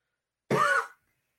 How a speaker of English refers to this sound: Sorry, I had to hit the cough button there.